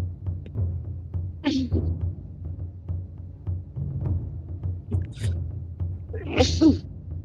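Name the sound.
sneeze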